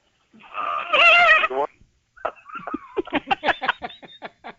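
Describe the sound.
A person mimics a horse whinny as a sound effect: a loud, quavering drawn-out cry, a brief pause, then a rapid fluttering run of short pulses trailing off, with no other voices.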